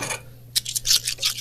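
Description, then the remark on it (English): Silver coins clink and jingle together in a quick, irregular run of bright, high metallic chimes, fairly loud, with a brief burst first and then a steadier cluster. No one speaks. “Your coins are so loud.”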